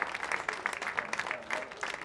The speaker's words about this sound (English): Everybody's here. Round of applause. There's everyone.